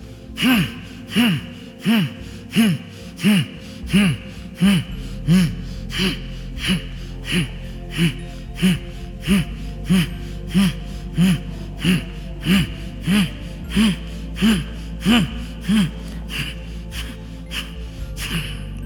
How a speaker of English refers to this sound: The last time, start deep breathing.